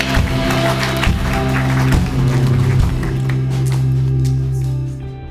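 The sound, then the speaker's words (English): An audience claps steadily over sustained keyboard chords, giving the Lord a clap offering in the morning. It is a dense wash of many hands that holds for several seconds and then thins out as the music fades. “Let's give the Lord a clap offering in this place this morning.”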